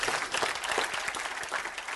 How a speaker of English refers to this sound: Somebody clap your hands and say amen or do something.